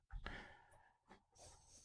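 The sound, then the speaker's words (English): An 80-pound dog sniffs and snorts at wax spilled on the floor, a few short, breathy snuffling bursts with brief pauses between them, fairly quiet and with no talking. “Sniffing all the wax that Dory spilled on the floor.”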